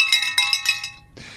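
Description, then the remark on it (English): A small high-pitched bell rings in a quick flurry of about five shaken strikes, its bright metallic tones lingering briefly before fading, followed by a soft burst of hiss. “Any Seabrook mentioned gets a bell.”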